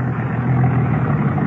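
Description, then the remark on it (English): A car engine rumbles steadily and fairly loudly, a low continuous drone with no voices, holding an even level throughout rather than rising and fading. “Next car, Ed. Name that color.”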